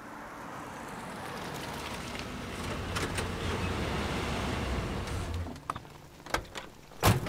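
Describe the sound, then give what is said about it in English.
A truck engine rumbles steadily as the vehicle rolls up and settles, then the engine drops away and a few sharp clicks and clunks follow as a door is opened. “Incoming truck!”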